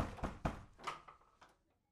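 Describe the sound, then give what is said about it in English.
A handful of dull thumps land at an uneven pace as someone bangs on a door, fairly soft, with no voices. “Yes, conveniently it opened. She's gone. By banging on it.”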